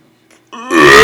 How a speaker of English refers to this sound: Don't burp in the mic.